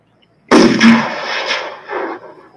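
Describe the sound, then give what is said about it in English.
A single loud gunshot sound effect, played as a test, cracks out of silence, followed by a rumbling, echoing tail that rolls and fades over about two seconds. “We over testing our gunshots”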